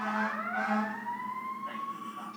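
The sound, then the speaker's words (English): An emergency vehicle siren wails steadily in the background, its tone rising slowly, with a low engine hum beneath it, sounding like it is passing by outside. “It's another siren.”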